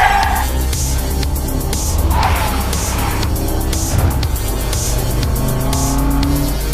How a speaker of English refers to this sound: You smash the car into drive and start to dart out of there.